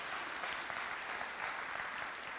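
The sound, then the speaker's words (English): A crowd applauds steadily, a dense wash of many hands clapping at once with no pauses, giving the mothers in the audience a warm ovation after a prayer. “Give these moms a round of applause.”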